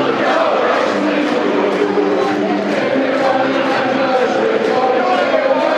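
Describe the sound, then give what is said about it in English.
A large afternoon crowd at a football ground roars steadily throughout, a dense wash of many voices with hints of chanting, loud and continuous. “Decent crowd in this afternoon, dear listeners.”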